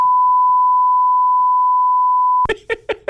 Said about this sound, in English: Do you know how long of a bleep I had to put over that?